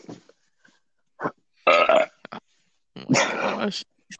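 burp

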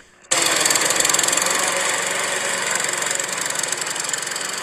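lawnmower engine running

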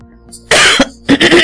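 throat clearing

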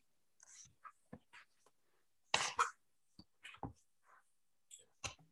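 cough

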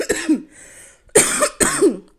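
cough

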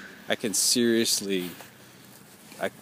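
crow cawing

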